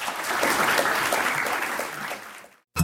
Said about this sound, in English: Well, thank you both very much. We are out of time, so I'd like to give another round of applause for our speakers.